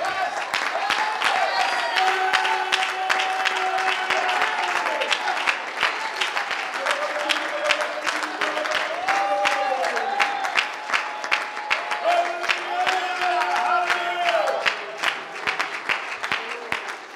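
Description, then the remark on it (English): A crowd claps their hands to Jesus steadily and densely for the whole stretch, with scattered cheers and whoops rising over the applause and voices calling out in the mix. “You clap your hands one more time to Jesus.”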